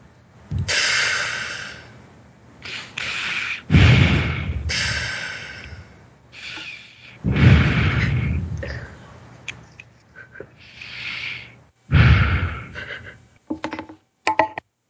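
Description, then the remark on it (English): Heavy, rasping breaths and loud snorts from an injured man who is gushing blood repeat in uneven bursts, each swelling and fading with short pauses between, with no talking throughout. “He's just breathing.”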